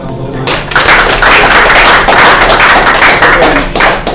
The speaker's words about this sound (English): So I think that deserves a round of applause as well.